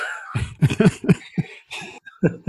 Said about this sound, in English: Please excuse any coughing you hear today. I will do my best to keep everything muted, but you know it is early spring, so it's the time of the year to get sick.